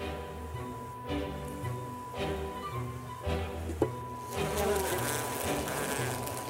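A dense, steady drone of many bees buzzing in a hive while someone inspects the colony, a continuous humming swarm with a brief knock partway through and the buzz swelling louder toward the end.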